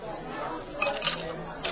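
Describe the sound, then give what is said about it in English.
Ice cubes clatter into a glass for a cocktail in a few quick, bright clinks, with a second small burst of clinking shortly after, over a steady murmur of background chatter. “The sound of adult ice cubes being dropped into a glass means it's cocktail o'clock.”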